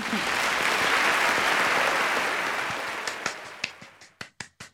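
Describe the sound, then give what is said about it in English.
A large audience in an opera house applauds in a dense, sustained wash of clapping that gradually thins out, ending with a few scattered, distinct claps as the ovation dies away. “The entire opera house is applauding and gasping her every move.”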